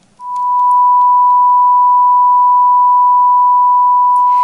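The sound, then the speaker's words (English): Two pure tones of the same frequency sound together in perfect unison, merging into one loud, steady, unwavering electronic hum that starts abruptly and holds for about four seconds without any beating or change. “When two pure tones with the same frequency are sounded together, their sound waves are the same.”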